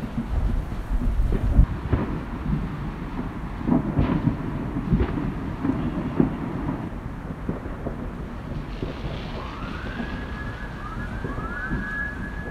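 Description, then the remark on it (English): Distant Fourth of July fireworks rumble like far-off thunder, with several muffled booms over a steady low roar, then a few rising whistles near the end. “And I don't know why we celebrate the 4th of July the way we do. I think it's because we like war.”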